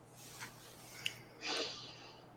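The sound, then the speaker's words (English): A faint breathy sniff, a brief intake at first, then a longer, louder snuffling draw of air, quiet, with no talking. “It sniffs.”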